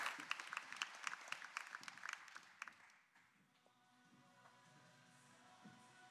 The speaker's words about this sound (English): All right, can we give the Steels a round of applause? Love y'all.